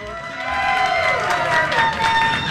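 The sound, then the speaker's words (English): A crowd at the Minnesota State Fair cheers and whistles steadily for a couple of seconds, a dense wash of voices with sharp, high whistle tones sliding above the roar. “So thank you all for coming and saying hi and whistling and cheering us on.”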